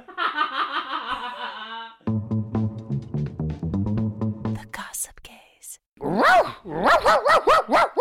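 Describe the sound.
A run of sharp, rising-and-falling dog barks comes in quick succession near the end, loud, after stretches of wavering vocal sounds and murmuring voices.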